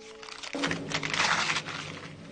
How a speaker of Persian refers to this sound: یوری مشغول نوشتن است. نوشتهاش را پاره می کند. اطرافش پر از کاغذ است.